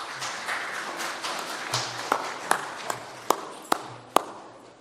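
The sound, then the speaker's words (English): A spontaneous round of applause from an audience, a dense patter of many hands that thins out into a few scattered, sharper individual claps toward the end, at a moderate level with no talking. “I'm glad that was a spontaneous round of applause”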